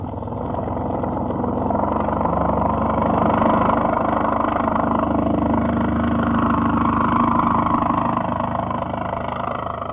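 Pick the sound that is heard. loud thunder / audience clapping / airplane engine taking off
airplane engine taking off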